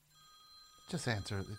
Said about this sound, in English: That's not my phone. That's your phone? Yeah. Should I answer it?